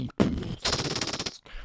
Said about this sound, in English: Gunshots and explosions.